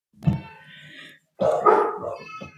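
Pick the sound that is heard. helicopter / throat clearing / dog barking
dog barking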